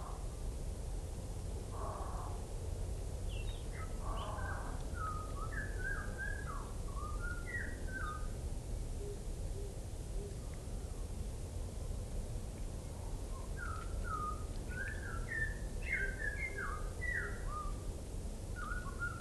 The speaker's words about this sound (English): Actually hear the world for once. That bird. We wouldn't have been able to hear that on most days. And what sweet music to the ears it is. I'm not sure they're usually out in winter.